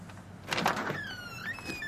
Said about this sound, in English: We'll knock, then. Let's see what God has in mind.